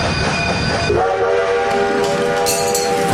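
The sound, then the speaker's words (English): A loud, sustained train whistle blows after a moment of rumbling rail noise, holding a steady chord-like tone to the end. “The whistles go woo woo.”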